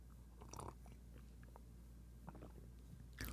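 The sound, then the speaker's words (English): Someone takes a quiet sip of a drink, with a few soft wet mouth clicks and a small swallow spread over a few seconds, and no talking. “I'll take a sip while I wait.”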